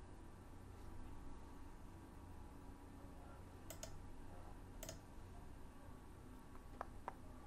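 A few sparse, faint clicks of someone typing on a computer keyboard tap out irregularly over a steady background hiss, with no one speaking.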